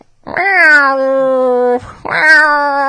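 A cat lets out two long, drawn-out, distressed meows, the first wailing for over a second and the second shorter. Both are loud, with no other sounds around them.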